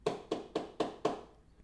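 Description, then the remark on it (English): Five quick, evenly spaced knocks on the door of a house, solid and fairly loud with a hollow thud, followed by a short stretch of quiet. “I knock on the door.”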